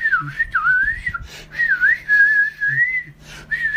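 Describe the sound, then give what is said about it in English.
A voice imitating aggressive flute playing whistles a shrill, flute-like melody in several sustained phrases with wavering, trilling pitch, broken by short pauses, loud and with no speech. “Some very aggressive flute playing in my face.”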